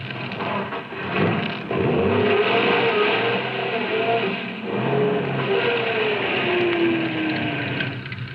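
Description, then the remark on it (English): A car engine revs and strains continuously as the car is backed off the road, its pitch rising and falling with a rough, grinding rumble, as if the wheels are struggling for grip. “Now back your car off the road. But it'll get stuck.”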